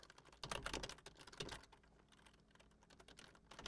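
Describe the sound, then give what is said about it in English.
Rapid, clattering keystrokes on a computer keyboard in a studio with no voices, loudest in a dense burst early on before settling into lighter, steady typing. “I hate this keyboard.”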